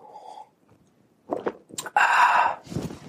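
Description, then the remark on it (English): A sip of coffee: a few soft lip and mouth noises, then a brief airy slurp and a quiet swallow, with no one talking. “So I'm going to take a sip of coffee.”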